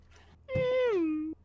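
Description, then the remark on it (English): A single drawn-out meow, sung by a voice imitating a cat, that starts high and slides downward, lasting under a second against a quiet background hum. “This is proper meow.”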